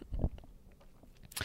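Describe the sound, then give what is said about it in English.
A short, low, guttural burp lasting a fraction of a second, followed by a quiet stretch and a brief breathy hiss at the end. No one speaks. “I kind of like burped.”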